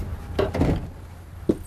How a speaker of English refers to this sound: I am amazed by this door. That is huge. It's a big door, but it's really light and easy to enter.